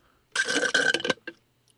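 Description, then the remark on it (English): A loud, gurgling slurp of iced coffee being sucked through a straw in a cup, lasting about a second with a steady airy hiss, followed by a brief short sip and then silence. “That sounded like it came from my body, but it's a straw in a cup.”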